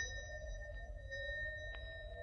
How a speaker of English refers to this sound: Find a bell button. No, there's a bell pull.